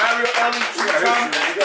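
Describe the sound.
Hands clap in a loose, uneven run of sharp smacks, mixed with a steady wash of voices and crowd noise that stays fairly loud throughout.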